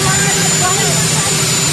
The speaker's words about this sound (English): Sorry, you have a helicopter roaring in the background. Go ahead.